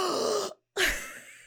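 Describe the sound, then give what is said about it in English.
Someone does a loud vocal imitation of a sharp gasp, two breathy bursts split by a brief silence, with no speech around them. “She just audibly gasped in a way that was honestly, I can't say embarrassing because I just love her so much.”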